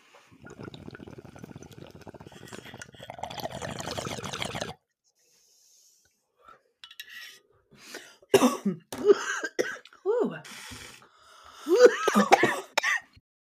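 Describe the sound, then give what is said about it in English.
Several seconds of steady water bubbling in a bong during a hit, a short pause, then a burst of harsh coughing and throat clearing in repeated loud fits. “wouldn't be Two Girls One Bong without a little cough moment”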